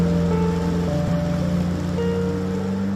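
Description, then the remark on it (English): A small boat motors across lake water: a steady, droning engine hum with a constant wash of water underneath, unbroken for the whole stretch, with no voices. “Oh, it's a beautiful boat and a beautiful lake.”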